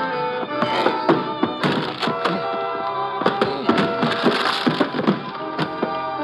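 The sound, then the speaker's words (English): Heavy, dull thuds as a shoulder slams repeatedly into a wooden door at the end of an upstairs hall, about a dozen blows in an uneven rhythm, with cracking wood, over a steady humming tonal background. “I start throwing my shoulder against the door.”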